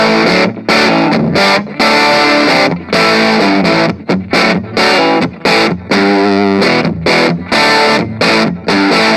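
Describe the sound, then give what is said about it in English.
A heavily distorted, blown-out electric guitar tone from an amp with its knob cranked up high plays a choppy riff of loud chords and short bursts separated by brief gaps, fuzzy and saturated across the range, with no voices. “We can crank it up even higher to get more of a blown out kind of sound.”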